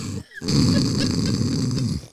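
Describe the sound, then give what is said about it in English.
A person imitates snoring with a long, rumbling, throaty snore drawn out for nearly two seconds after a brief pause, loud. “Dude, I should just do ASMR of just people snoring just”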